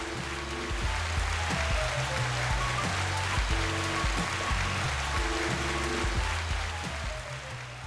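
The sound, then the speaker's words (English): Steady audience applause greeting the introduction of a guest, a licensed professional counselor, a dense wash of many hands clapping that holds at an even level for about eight seconds, with faint low musical tones running beneath it. “Love that applause.”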